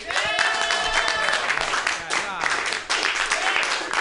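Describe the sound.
An audience at a comedy show claps steadily for about four seconds to vote for a comedian's set, a dense, loud patter of many hands, with excited whoops and cheering voices rising over the applause.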